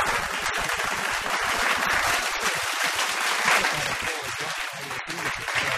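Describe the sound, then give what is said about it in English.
Sustained audience applause for Tim Minchin, a dense wash of many hands clapping steadily, loud and even throughout with no voices standing out. “Some more of that applause.”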